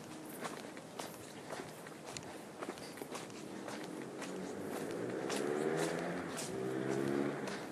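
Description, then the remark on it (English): Steady footsteps crunch along as someone walks toward a main road, with traffic noise swelling behind them and a car engine rumbling louder as it passes near the end. “You can hear the cars now. We're getting closer to the main road.”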